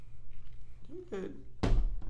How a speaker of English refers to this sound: Stop slamming your water bottle. Oh, my bad.